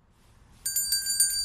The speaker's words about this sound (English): With the bell? The bell is part of it. It's the donation bell.